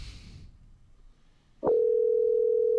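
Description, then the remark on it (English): After a quiet stretch of faint room noise, a telephone line clicks open and a steady, loud dial tone hums continuously to the end, clear with no voices, as a call is placed to a sick friend to see how he is feeling. “see if he can open his eyes enough to answer the phone and see how he's feeling.”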